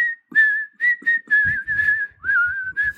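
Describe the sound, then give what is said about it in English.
Someone whistles a slow, eerie melody, the whistled theme from the film Kill Bill: a clear sustained tone that glides between notes in short phrases, with faint breathy thumps underneath and no talking. “What's the one from Kill Bill? That what's her name? Whistles as the nurse?”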